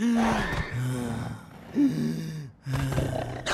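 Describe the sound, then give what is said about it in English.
A voice imitates labored breathing as a symptom of coronavirus: a few loud, raspy voiced gasps and heaving breaths in quick succession, with a brief pause before the final strained gasp. “Third, trouble breathing.”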